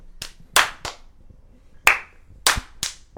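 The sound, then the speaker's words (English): Six sharp hand claps in two loose groups of three, made to sync USB and XLR microphone recordings, each a crisp, bright smack that fades quickly, with brief quiet gaps between and no talking. “I need a clap so that I can actually make this a thing.”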